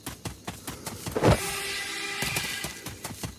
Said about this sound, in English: What does that sound mean? Cannon spawning.